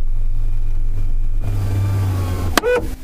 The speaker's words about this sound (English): What was that? That's the sunroof.